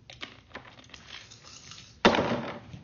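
Seven dice rattle with faint scattered clicks, then land in one sudden loud clatter that tumbles and rattles for under a second before settling. No one speaks.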